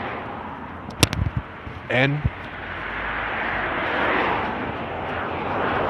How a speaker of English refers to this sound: so there's some cars coming by.